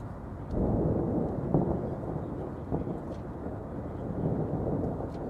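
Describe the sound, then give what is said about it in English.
Deep, continuous rumbling of a thunderstorm that a passenger flight is passing through, with heavy low thunder rolling steadily throughout and a couple of slightly sharper swells. No voices, just the dense storm noise. “Ladies and gentlemen, our flight is experiencing some slight turbulence as we pass through a storm.”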